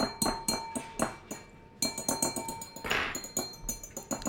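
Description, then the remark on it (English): Heston taps a wine glass with a fork over and over in a quick, steady rhythm, each strike leaving a bright, high ringing tone; the tapping pauses briefly, then resumes. “So Heston's whacking a glass with a fork.”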